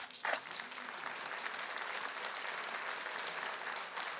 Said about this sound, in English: I think they're applauding you, not me, but that's fine.